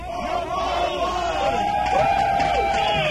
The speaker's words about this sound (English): And the crowd cheered on and on.